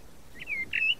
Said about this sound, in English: Oh, listen to that. Blackbird. Going to sing for us again.